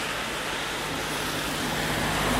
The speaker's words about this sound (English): And then cars coming from the other side. Oh, lots of cars. Now they're coming from both sides, behind me and in front of me.